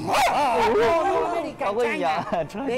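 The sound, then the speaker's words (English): A pet dog held by a Cuban man barks and yelps in a quick series of loud bursts, its pitch rising and falling, with a voice mixed in underneath. “This Cuban guy is holding his pet dog.”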